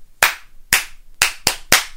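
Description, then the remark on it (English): Five crisp hand claps clapping back a rhythm pattern: two evenly spaced slower claps, then three quicker ones in a row. They are played alone, with no talking. “And then can you clap it back?”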